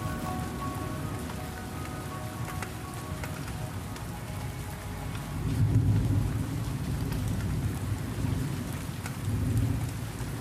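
A storm breaks over Arim: steady rain hisses and patters across surfaces, dousing fires, while deep rolls of thunder rumble underneath, swelling louder around the middle and again near the end, with no voices.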